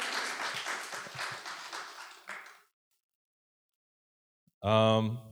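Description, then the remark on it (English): A crowd applauds with dense, steady clapping for a couple of seconds before it fades out. After a short silence, a single voice starts talking. “You should clap for that too.”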